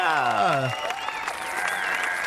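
Townspeople turn and cheer and applaud as someone comes out of a tavern: a loud cheering shout slides downward in pitch, then gives way to a steady wash of crowd applause and cheering, with high whistle-like tones drifting through it.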